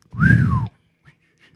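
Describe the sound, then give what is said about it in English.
A single breathy, hollow whistle made by a person blowing, like air blown across the mouth of a bottle, rising slightly then sliding down in pitch over about half a second, fairly loud, then quiet. “It's like blowing into a bottle with water in it.”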